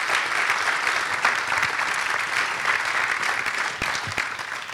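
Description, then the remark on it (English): Sustained audience applause for John Swinton in the Marquee at Spring Harvest, a dense, steady wash of many hands clapping at an even loudness throughout, with no voices standing out. “But why don't you give another warm round of applause for John Swinton, and we'll get seated.”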